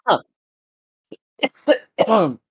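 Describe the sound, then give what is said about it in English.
A fairly loud coughing fit: a sharp cough, a pause, then a quick string of harsh bursts ending in a longer, raspy hack. “I am coughing up a lung.”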